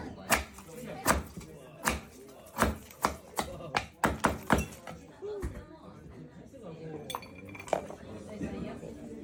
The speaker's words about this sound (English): I don't like the little knife tap he did. I know that's theater, just reminds me, yeah, of Salt Bed. Every time I see someone tap a knife on the cutting board, I hate it.